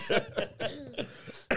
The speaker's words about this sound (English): A lot of coughing and sneezing.